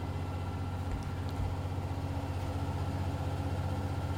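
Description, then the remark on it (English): A washing machine on its spin cycle gives off a steady, low mechanical drone with a constant hum and faint rumbling, unchanging in loudness for the whole few seconds, with no voices. “I think the washing machine spinning is not as noisy as the bang, bang, bang, bang.”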